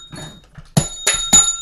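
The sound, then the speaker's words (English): A bell is struck three times in quick succession, each hit sharp with a bright ringing tone that rings on, following a brief stretch of soft low rumbling. “It sounded like it hurt the bell.”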